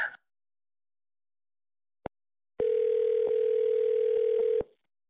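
A sharp click, then a loud, steady telephone dial tone holds a single low-pitched hum for about two seconds before cutting off abruptly. No one speaks.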